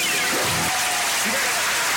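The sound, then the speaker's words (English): Steady, dense applause fills the whole two seconds, loud, with a few brief murmurs of voices underneath. “Roaring round of applause for all you there.”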